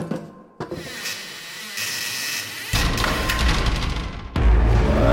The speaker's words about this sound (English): Just gotta push this door back out of the way a bit.